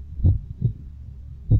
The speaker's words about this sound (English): All I could do was listen to my own shallow breathing and my ever-fading heartbeat